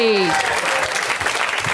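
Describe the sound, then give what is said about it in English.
A crowd claps and cheers in a steady, dense burst of applause, loud and continuous, with a voice trailing off briefly at the very start. “Give it up for everybody!”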